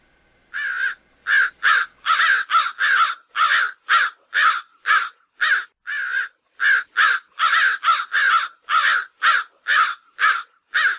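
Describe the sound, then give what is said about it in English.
A crow caws over and over in a rapid, steady series of harsh, loud calls, with short gaps between each caw and no other sounds. “Now, everyone knows the sound of a crow. It's more of a cawing noise.”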